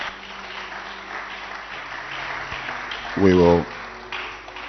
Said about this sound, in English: Clap your hands for her.